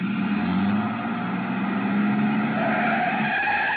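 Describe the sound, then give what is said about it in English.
A truck's loud engine is started and roars steadily while tires skid and squeal, the pitch of the engine shifting over a few seconds with no voices present. “He turned over the engine and switched on the lights before I could get clear.”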